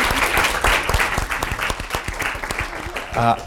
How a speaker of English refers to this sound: A round of applause.